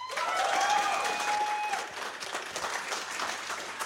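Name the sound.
audience clapping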